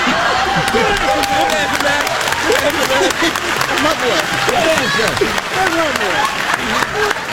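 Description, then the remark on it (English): A studio audience applauds loudly and steadily, dense clapping running the whole way through while voices whoop and cheer over it. “Yeah, I know, clapping, going, yeah, yeah, man, wow, that's right, yeah.”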